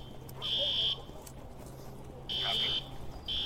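An evacuation drill alarm at an elementary school in Jefferson County, Colorado, blares in loud, harsh, high-pitched electronic bursts, roughly three pulses with short gaps, over a low steady hum and faint background murmur.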